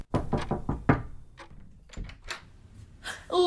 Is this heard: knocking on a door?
yes